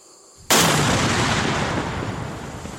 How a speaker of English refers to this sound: Whew. Unbelievable. 30-foot by 60-foot explosion, just from this one little device. One more down, 4 or 5 million to go.